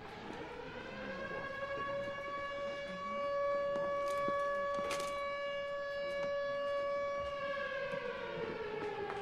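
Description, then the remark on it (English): A loud outdoor tornado warning siren wails steadily for the whole stretch, its rising and falling tone holding strong with no talking over it. “A tornado warning siren goes off.”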